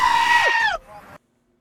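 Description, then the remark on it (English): A screaming goat sound effect: a loud, strained goat scream rings out for under a second, harsh and human-like, then trails off into a brief quieter tail before cutting to silence. “Screaming goat.”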